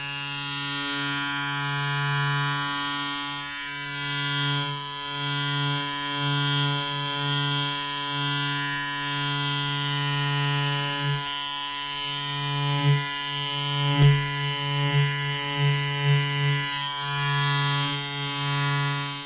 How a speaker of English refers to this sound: Let's try the shaver.